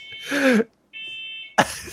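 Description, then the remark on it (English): A single steady, high-pitched smoke alarm beep going off in a flat, lasting over half a second, sitting between bursts of laughter and throat-clearing noises. “Sorry, I'm laughing because the smoke alarm is going off in my flat here.”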